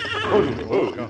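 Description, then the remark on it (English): A horse neighs by a grove of trees beside a road at midday, a loud, quavering neigh that rises and falls in two wavering surges over about a second. “What's wrong, boy? What is it?”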